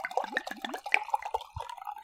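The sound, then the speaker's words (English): A full-bodied red wine glugs out of a bottle into a glass: a quick run of bubbly gurgles and splashes lasting about two seconds, with no talking over it. “Okay, well, let's pour it so we can, like, actually smell.”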